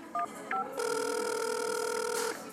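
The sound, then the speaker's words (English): Two quick keypad beeps are followed by a long, steady electronic ringback tone of an outgoing phone call to a child's mother, holding one even pitch for over a second before cutting off. No one speaks. “I'm calling the mom again.”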